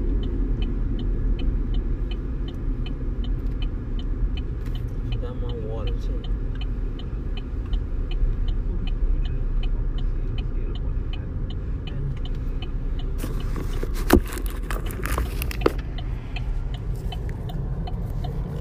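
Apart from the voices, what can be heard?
car interior rumble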